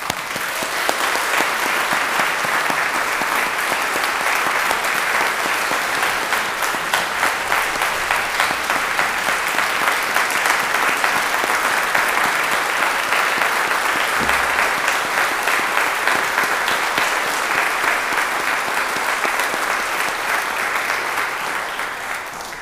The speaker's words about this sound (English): I want everyone just to give him a debt of gratitude with a round of applause.